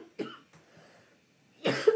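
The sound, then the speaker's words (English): Two harsh coughs from one person, a short one followed after a pause by a louder, longer burst, with faint breathing in between and no talking. “Oh, hold on. I have to cough for a second.”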